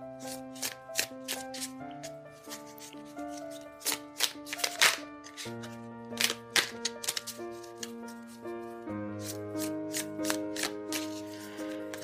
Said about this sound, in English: But let's go ahead and shuffle.